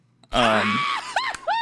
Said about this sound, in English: So, dude, you need to send me, rant before I forget, you need to send me that sample that you have of me, like, fucking screaming or whatever.